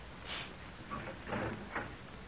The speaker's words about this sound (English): I'm going to open up the door and listen.